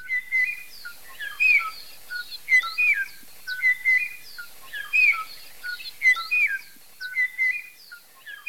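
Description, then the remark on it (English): A 1980s recording of the last known Kauai o'o, an extinct forest bird, singing to a mate that no longer existed in the highest forest near the top of Kauai, Hawaii: clear, fluty whistled phrases repeating in a steady rhythm, with overlapping chirps and no talking, heard alone against a quiet background. “A very small population of this species made it into the 1980s in the highest forest near the top of Kauai, when the last known individual was recorded singing its beautiful and haunting song to a mate that no longer existed.”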